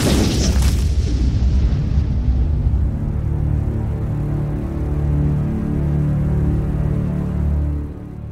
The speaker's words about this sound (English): and this thing just smashes down on it, and there's a giant explosion.